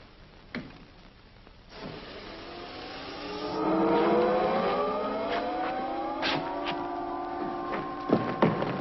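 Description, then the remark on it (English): A rocket ship taking off: a loud rumbling roar swells up after a couple of seconds, with a whining engine tone that climbs in pitch and holds steady, punctuated by a few sharp clanks. “Only 30 seconds to take off.”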